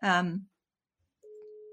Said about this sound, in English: Sorry, what's going on there? Can you hear a phone? No, we're good over here. Oh. No, nothing there. Sorry, my phone. Yeah. I just accidentally hit the call button.